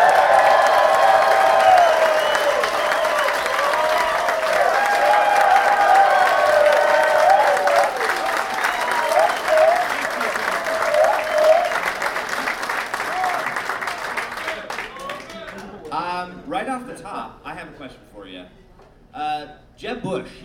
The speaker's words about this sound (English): So I know we just gave him a round of applause, but since he's getting it on video, let's give him another round of applause.